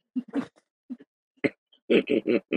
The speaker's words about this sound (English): Yes, and I've woken my dog because we're in New York, and now he thinks I said hello to someone at the door.